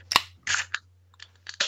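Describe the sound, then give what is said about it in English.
A High Life beer bottle cap cracks off with a sharp metallic pop, followed by several short bursts of fizzing hiss. A low steady hum runs underneath, and no one speaks. “I left one to open.”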